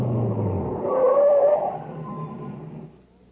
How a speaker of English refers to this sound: No, stop here, by the reactor equipment building. What for? Just stop the truck.